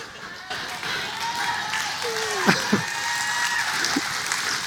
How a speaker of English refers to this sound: It's rain. Did you think it would not rain today? I'm preaching. It rains when I preach.